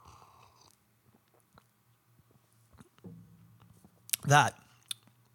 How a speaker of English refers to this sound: That was a big sip. I'm going to have another, smaller this time.